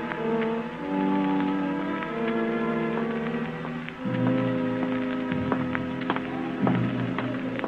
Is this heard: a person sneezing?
no